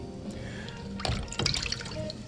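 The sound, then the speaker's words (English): Water sloshes and splashes as a dish is lowered into a basin of clean water and swished around to rinse it, with two brief bursts of liquid movement over a quiet background. “As I put the spirit dish in clean water”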